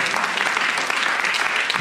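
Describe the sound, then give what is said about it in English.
An audience at a live panel event breaks into a steady round of applause for the panelists, many hands clapping in a dense, even wash of sound that stays loud throughout without fading. “Please give a round of applause to all of our panelists.”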